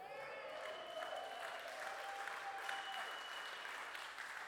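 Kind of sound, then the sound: crowd, audience applauding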